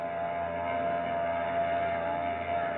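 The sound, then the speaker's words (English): The engine of the ship Brisbane Star drones steadily as it pulls out from its pier at the Embarcadero, a constant low rumble with a faint humming tone running through it, unchanging for the whole stretch and with no voices. “She's pulling out all right, baby.”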